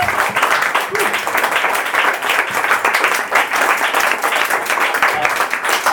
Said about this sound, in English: Just before, whilst I'm on the roll, we want to say a massive thank you to this venue for putting us up. They did it last minute, right? So let's give them a massive round of applause.